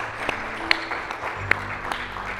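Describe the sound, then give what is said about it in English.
An audience applauds baptism candidates joining the pastor on stage, a dense wash of clapping with a few sharper claps standing out, sustained and moderately loud throughout. “Come on, let's give them a round of applause.”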